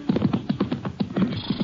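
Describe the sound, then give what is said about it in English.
A horse grazing out back of a shack in the hills whinnies in a quick, fluttering series of pulses, fairly loud, with no one speaking over it. “That Tom's horse, Sheriff? Grazing out back?”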